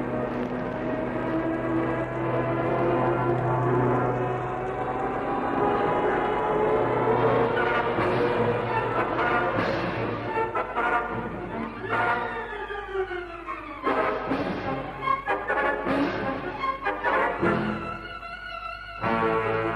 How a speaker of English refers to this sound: Michu and Haines hold their breath as the first plane sweeps down from the sky at the patch of elephant grass.